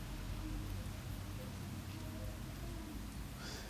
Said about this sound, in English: What I can tell you is here in the Bay Area, it feels like a calm before the storm. And I say that, I don't know if you all can hear it, but under the rain track that we always have, there's actual rain because we're in the middle of the storm.